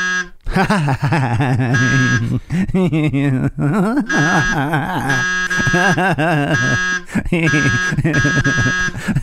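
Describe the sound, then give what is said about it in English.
Loud electronic buzzer tones blare in repeated bursts, overlapping a warbling, wavering voice-like drone that rises and falls nearly the whole time, with only brief gaps. “I really liked the buzzers. They sounded like this.”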